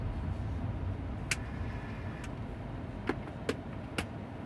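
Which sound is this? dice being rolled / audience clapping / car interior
car interior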